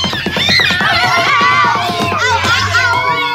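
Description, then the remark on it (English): A loud, chaotic chorus of farm animals braying, barking and crying all at once, overlapping wails and yelps rising and falling without pause for a few seconds. “Then the animals all tried to warn one another of the danger, and so they all made their noises as loudly as they could.”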